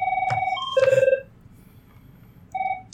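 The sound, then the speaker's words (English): A phone rings with a bright electronic warble, several tonal bursts in quick succession, then a pause and another ring starting near the end, over a low room hum. “What is this ringing?”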